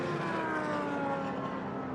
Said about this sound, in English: We've got going again, as you can hear from the engine noise behind my voice at the moment.